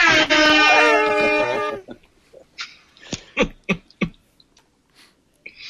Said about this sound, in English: The more smoke, the better that air horn gets.